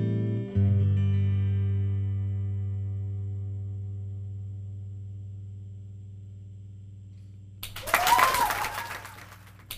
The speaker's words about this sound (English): Just a little baby clap. Thank you.